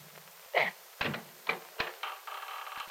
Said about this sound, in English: The door opens.